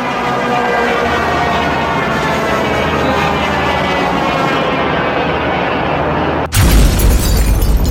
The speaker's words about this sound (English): Yamamoto's plane was hit by bursts of cannon and machine gun fire, forcing it to go down in an explosive impact in the jungles of Bougainville Island.